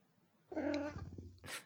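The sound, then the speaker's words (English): A single drawn-out cat meow, fairly loud, wavering in pitch before trailing off, followed by a brief breathy hiss of noise. “My cat agrees with that.”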